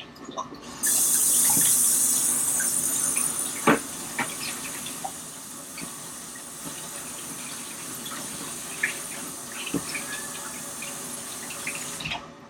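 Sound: tap water running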